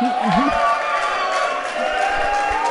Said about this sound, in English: A round of applause and a quick break.